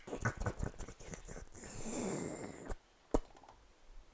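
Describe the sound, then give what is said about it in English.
Wet smacking and slurping of a dog licking, a quick run of rhythmic laps followed by a longer, messier lick and one last sharp smack, with no voices. “Dog's licking away.”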